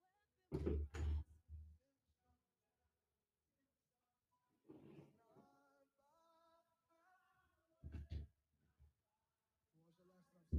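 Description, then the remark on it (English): A door is pushed shut with a few heavy thuds and bumps spread over several seconds, with faint muffled voice-like sounds between them. “I'm going to shut this door.”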